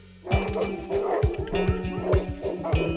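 Police search dogs bark in quick, repeated bursts, several animals yapping over one another, loud and continuous with short yips mixed in.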